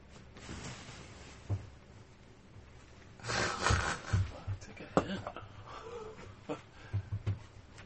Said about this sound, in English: The dog keeps trying to break in. This dog. Yeah. Good dog, though.